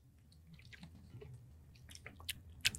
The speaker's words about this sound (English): I'm going to do the smallest sip ever.